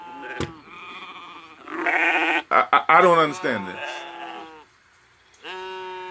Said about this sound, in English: So what's that I'm hearing then? This bleating of sheep and this mooing of cattle.